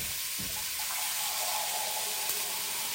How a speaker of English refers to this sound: And here's what I'm going to do. I'm going to pour some water in.